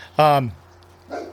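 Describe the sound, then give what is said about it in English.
A single loud, high-pitched dog bark in a backyard that slides downward in pitch, followed by a short pause and a fainter, muffled sound. “Dogs going in the backyard. Neighbor's dog's wild. Our dog's wild.”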